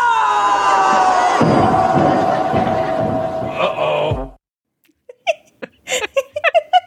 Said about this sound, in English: Every time. It's so beautiful. And all the screams get better with every pig that falls down this mountain. It's so good.